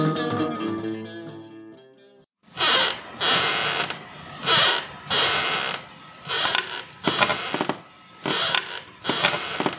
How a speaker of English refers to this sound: The sound of the old weathered rocking chair on the porch startled me at first